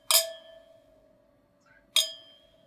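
Two bright glass clinks in a toast over wine, about two seconds apart, each ringing with a sustained tone that slowly fades, fairly loud with no talking.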